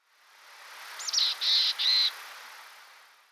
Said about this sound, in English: Black-capped and mountain chickadees are easy to tell apart. Mountain chickadees give notably raspier calls, sounding as if a black-capped chickadee has a very sore throat.